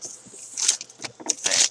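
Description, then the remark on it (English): Papery rustling and riffling in a few uneven bursts as a small stack of question cards is shuffled by hand, with brief scraping swishes and no talking. “Let's shuffle them up. Shuffle them up.”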